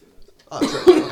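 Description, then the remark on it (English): A loud, close cough right up against the microphone, a harsh rough burst with a second heavier push, after a brief quiet moment. “Sorry about me coughing on the mic like that.”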